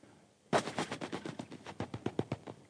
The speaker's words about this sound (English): You hit the first domino, if they're lined up right, every other domino knocks off.